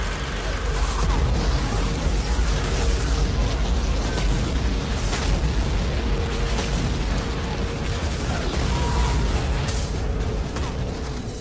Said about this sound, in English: Ah, man, the bombs. These real bombs. These big old fireballs. A whole hill being exploded. Smoke.